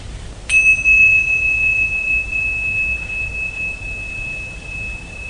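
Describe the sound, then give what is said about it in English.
A single clear strike of a hand bell, bright and ringing, its tone sustaining and slowly fading over several seconds over a low background hum; the bell is rung to signal the end of a walking meditation. “And when you hear me ring the bell, then just come back in here and return to our seats.”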